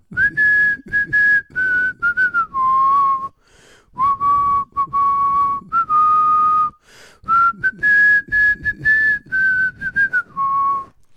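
Someone whistles a tune, the melody moving through short phrases broken by brief pauses for breath. The whistling is clear and fairly loud, with no talking.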